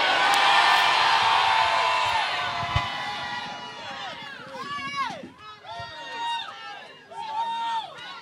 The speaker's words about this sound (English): Can I hear you shout that amen like a thunder?